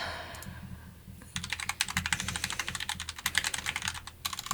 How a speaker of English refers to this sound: Frantic typing sounds in the background. Look at it out in post.